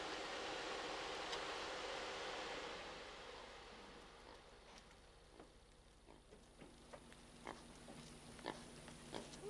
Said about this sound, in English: We got somebody coming up over here to greet us. Who's this? Huh? Oh, a little pot-belly pig? How you doing?